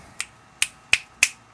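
finger snap

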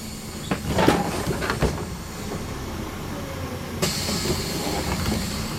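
bus door opening

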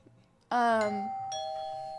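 doorbell ringing

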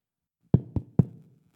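knocking on a door

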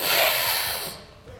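heavy breathing

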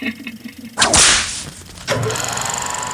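whip crack

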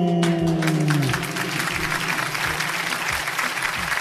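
applause

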